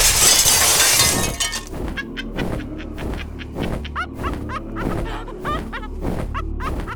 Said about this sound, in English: But as the words formed on his tongue, that slow figure outside his window crashed through the glass.